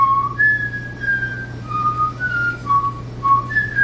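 Someone whistles a TV theme tune, a bright melody of sliding, sustained notes with short pauses between phrases, carried over a steady low hum with no talking.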